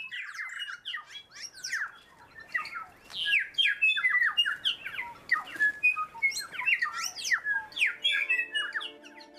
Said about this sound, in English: Birdsong can be so beautiful, but what does it mean? Is this a melodic tune or an elaborate poem that's to enthrall and attract another bird? Or is it an angry shout, like a warning to stay out of my territory?